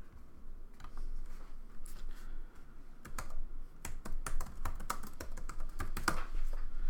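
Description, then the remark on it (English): Rapid, uneven clicking of keys on a computer keyboard, a flurry of sharp taps with short pauses, heavy-handed and busy, with no voices, as someone types a Google search. “I'm typing hard as fuck.”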